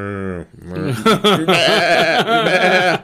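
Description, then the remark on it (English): A person's voice loudly mimics the bleating of the cattle Saul's army kept as spoils from the Amalekites: one drawn-out bleat, then a rapid run of wavering, quavering bleats lasting a few seconds. “And Samuel says, what is the sound of all these cattle I hear?”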